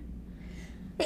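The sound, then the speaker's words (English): A single sharp sneeze bursts out loudly near the end, following a stretch of quiet low background hum. “Bless you.”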